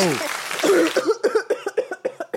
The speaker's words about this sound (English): I've got a chronic hacking cough. Did not get vaccinated.